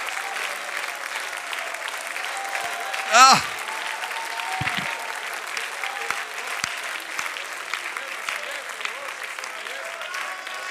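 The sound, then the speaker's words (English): A large crowd claps steadily and continuously, a dense wash of applause filling the whole stretch, with a brief voice rising over it partway through. “Clap again and rejoice in that.”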